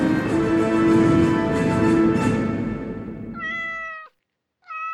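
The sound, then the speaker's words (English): A rough, noisy stretch gives way to two clear cat meows, the first longer and the second cut short at the end. No one speaks. “Look, Daddy. It's a kitty.”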